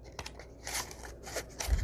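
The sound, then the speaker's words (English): Scissors snip through music paper, cutting out a circle in a quick series of crisp cuts, with a soft rustle of the sheet being turned between snips. “And I'm just going to cut a circle.”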